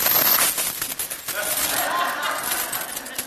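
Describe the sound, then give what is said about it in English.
A large church key chain almost 3 feet long, holding every key needed in the church, jangles steadily and loudly, a dense, continuous metallic clinking and rattling that carries on for several seconds without pause. “Almost 3 feet long, with every single key that we need in this church for any reason at all.”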